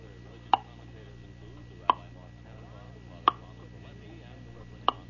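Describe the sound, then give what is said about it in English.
A voice imitates a big white railroad pendulum clock ticking: four sharp, clicky tocks spaced evenly about a second and a half apart, over a faint steady low hum with no other talk. “That kind of clock, you know, just ticking away. And every minute would go, dunk.”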